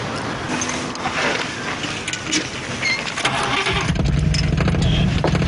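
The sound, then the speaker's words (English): A car engine cranks over with a grinding starter whine, then catches and rumbles into a steady, loud idle, with no one speaking. “Start her up.”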